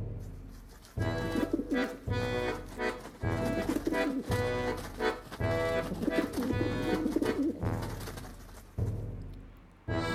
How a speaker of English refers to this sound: Here they are now, the Pigeon Panoply. Pigeons are entering the stage single file. They're waddling in and ruffling their feathers one by one.